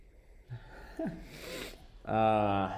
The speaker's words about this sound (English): He sniffs the mic. That's kind of weird.